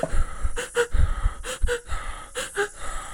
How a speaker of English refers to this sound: When you're doing the double inhale like that, when you do the normal inhale, you're actually going to, yes, you're going to exhale when you follow with the exhale.